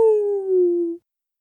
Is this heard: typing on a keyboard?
no